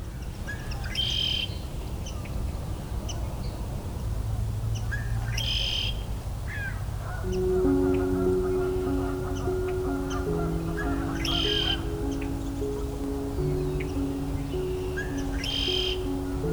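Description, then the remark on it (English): Red-winged blackbird calls ring out in a repeating pattern, a harsh buzzy phrase every few seconds, over a steady low rumble with a layered tonal hum joining partway through. “The red-winged blackbird is the most abundant bird species in North America.”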